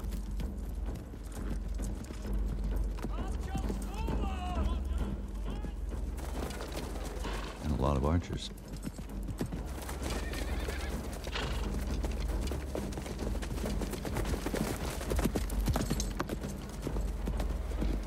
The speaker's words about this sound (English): A lot of horses.